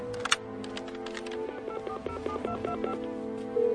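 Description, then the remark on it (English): A rapid run of touch-tone beeps as a phone number is keyed in on a borrowed phone, each tone short and evenly spaced, over a faint background hum. “May I use your phone?”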